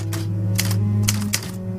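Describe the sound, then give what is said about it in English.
Typewriter keys strike in a handful of sharp, uneven clacks, about four in a short burst, fairly loud over a steady low hum in the background. “Punch the keys, for God's sake!”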